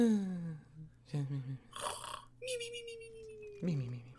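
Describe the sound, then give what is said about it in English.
A voice imitates exaggerated cartoon snoring: a rumbling, gravelly inhale followed by a long whistling exhale, then another snore, loud with no other talk. “Manus, he snored as if he hadn't slept for 10 days and 10 nights before. Which I imagine sounded like”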